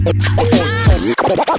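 Loud DJ turntable scratching over a beat: rapid, swooping pitch bends cut back and forth above a steady low bass tone, breaking off abruptly into a brief pause before the music resumes.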